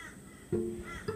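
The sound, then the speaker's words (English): Birds call out loudly in two harsh, crow-like caws, a longer one followed by a shorter one, with no talking. “Birds aloud.”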